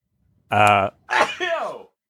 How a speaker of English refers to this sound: Gesundheit.